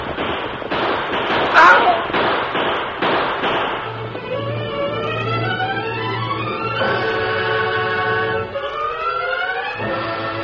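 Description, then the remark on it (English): A rapid volley of about eight loud, sharp gunshots out in back of a restaurant in the first few seconds, followed by rising, whining tones that sweep upward repeatedly, like ricochets or a siren, with no talking. “As Greg Morgan heard the shooting out in back of the restaurant, he rushed outside.”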